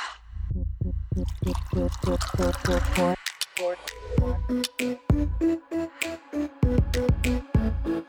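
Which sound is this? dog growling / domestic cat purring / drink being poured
drink being poured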